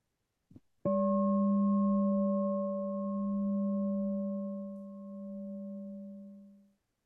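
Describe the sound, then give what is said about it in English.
A small bell is struck once after a faint tap, then rings out alone with a steady, clear tone and bright overtones that slowly fade over about six seconds. “Let me give you a little bell.”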